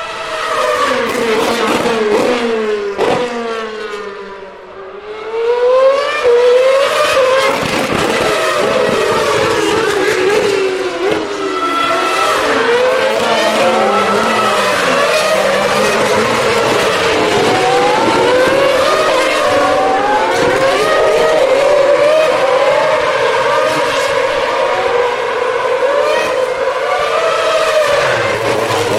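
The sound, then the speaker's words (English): A racing car engine roars and whines continuously as the car goes round the first corner, pitch sweeping up and down through gear changes, with brief tire squeal. Loud, no talking. “The car's going round the first corner.”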